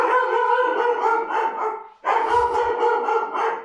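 A dog howls and yelps loudly in two long, sustained stretches, with a brief pause between them and some low thumping in the second half.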